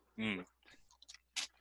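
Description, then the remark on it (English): Wet chewing of cotton candy Cap'n Crunch cereal soaked in milk, in a few soft, squishy bursts, opening with a brief voiced hum from the eater. “I've had my cereal soaking in milk for a while.”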